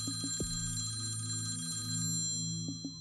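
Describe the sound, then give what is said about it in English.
A wall-mounted rotary telephone's bell rings steadily and loudly for the whole stretch, a sustained metallic tone with a few brief sliding blips over it and no one speaking. “The telephone rings.”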